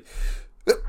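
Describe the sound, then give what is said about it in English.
A single sneeze: a breathy intake of air, a brief pause, then one sharp, explosive burst, with no talking. “Bless you. Bless you.”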